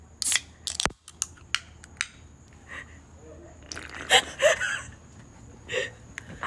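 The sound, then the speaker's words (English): A few sharp clicks lead into a crisp crack as a can of Limoncello LaCroix sparkling water is opened, followed by short fizzy hissing bursts and soft sipping and breathy sounds, with no speech. “go ahead and open that can and give us your reaction”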